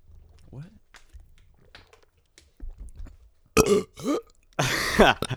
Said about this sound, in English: Can everybody burp on command?